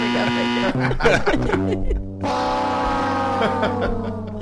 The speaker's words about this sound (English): There we go. Hit some kind of buzzer for that. There we go.